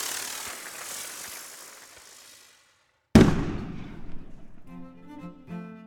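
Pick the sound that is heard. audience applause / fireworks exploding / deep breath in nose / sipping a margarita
fireworks exploding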